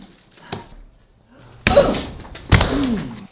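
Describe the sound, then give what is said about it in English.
A door slams shut with two loud, heavy bangs about a second apart, preceded by a softer knock; a brief vocal sound follows the last impact, in a haunted-mansion Halloween map of a game. “There's a door there.”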